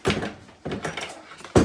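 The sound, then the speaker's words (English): A fridge door is pulled open and handled, with three dull, broad clunks and rattles spaced about half a second to a second apart, the last one sharp and loud. No one speaks. “I'm going to grab something out of the fridge.”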